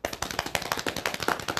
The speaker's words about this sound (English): Do you want a drum roll? Yes, please.